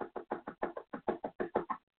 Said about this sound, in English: And she was like, don't y'all hear that knock? Who's at the door?